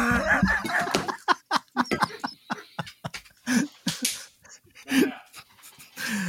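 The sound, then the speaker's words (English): A dog barks repeatedly in short, sharp bursts, loud, with brief panting-like breaths between barks and no talking. “Oh, somebody's got a doggy.”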